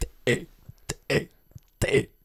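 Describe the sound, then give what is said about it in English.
Someone belches out the letters of the alphabet one at a time: three rough, gravelly belched syllables about a second apart, each starting with a sharp gulp or click, fairly loud. “I can belch the alphabet.”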